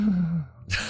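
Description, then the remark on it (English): A sleeping cat lets out a low, droning snore-like breath that slowly drops in pitch, then ends with a soft, airy huff, quiet, with no talking. “It's almost like a snore, but not a snore.”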